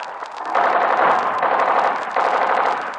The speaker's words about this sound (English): Clear the doorway. I'm shooting down the door.